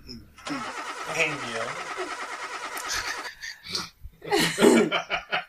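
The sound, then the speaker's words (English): A wheezing, sputtering burst of sound like a car engine cranking and turning over runs for about three seconds, likely a voice or laugh imitating it, followed by people talking. “Where's the car starting?”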